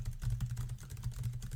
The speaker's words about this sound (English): I did a bunch of fake typing to make it sound like you were typing a lot. I was typing on my phone.